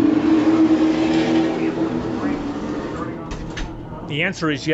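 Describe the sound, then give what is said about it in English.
Race cars roar steadily around a track, a loud continuous engine drone, then near the end one car whips past, its pitch sweeping sharply as it goes. “A little bit of racing behind us here.”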